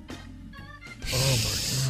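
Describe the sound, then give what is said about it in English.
Heavy, noisy breathing: a few softer breathy puffs, then a loud, sustained rasping exhale with a faint voiced hum underneath. “All that heavy breathing.”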